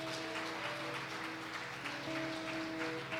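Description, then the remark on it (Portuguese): A church audience claps steadily for several seconds, applauding the Lord at the end of a service, a dense, even wash of applause, while sustained keyboard or organ chords hold underneath and shift pitch partway through. “Aplauda o Senhor mais uma vez, igreja.”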